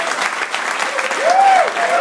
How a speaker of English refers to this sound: Let's have another round of applause for the Sigma Phi Epsilon Edge National Convention.